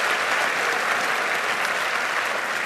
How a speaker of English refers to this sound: Come on, just bless him. Clap your hands for them as well.